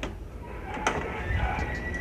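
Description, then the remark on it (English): A door is opened with a scraping, rumbling slide and a sharp click partway through, set against steady low background noise, with a dog standing right by the door. “But I went to the door there and when I opened it, he was standing right by the door”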